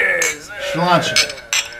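Beer glasses clink together in a toast, several bright taps spread across a couple of seconds, with voices murmuring underneath.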